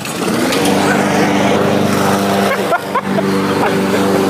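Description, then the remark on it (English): A lawn mower engine drones steadily, loud and continuous with a rough, buzzing hum that barely wavers for the whole stretch. “It's mowing time.”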